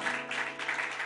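Steady audience applause, a dense wash of many hands clapping at an even, moderate loudness throughout, with no voices standing out.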